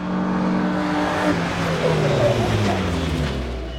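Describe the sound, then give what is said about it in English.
A rally car engine revs loudly, its pitch climbing and dropping in quick surges for a few seconds, with a steady gritty roar underneath; a car at Rally Colorado, run on twisting dirt roads near Rangeley, opening the 2020–2021 California Rally Series season. “Rally cars will tackle over 130 miles of twisting dirt roads near Rangeley this weekend”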